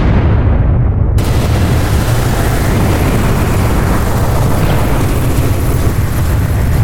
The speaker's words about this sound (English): A strange and powerful storm breaks loose beneath the ground, and the earth is split asunder, shattering our progress beyond salvage.